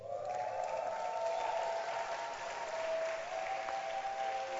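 An audience claps steadily for several seconds for a guest speaker from Mozambique, a dense, even patter of many hands, with a faint sustained tone humming beneath the applause.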